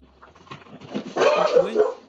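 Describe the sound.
A dog whimpers and gives short yips, its high whining growing louder and more insistent in the second half, with faint voices murmuring underneath.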